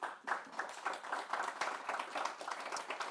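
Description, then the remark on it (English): An audience applauds panelists after a discussion on district heating legislation, many hands clapping in a dense, even patter with crisp sharp slaps that hold at a moderate level for the whole stretch. “How about a round of applause for our panelists?”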